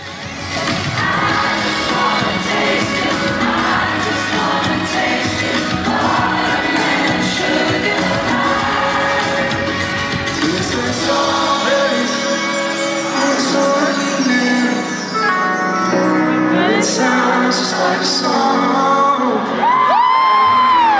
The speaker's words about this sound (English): So you could hear him in relationship to everyone else screaming singing the melody.